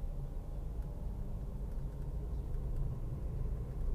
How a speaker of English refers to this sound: Man, there's too many fucking trucks on this street. There's so many fucking trucks that go into downtown LA.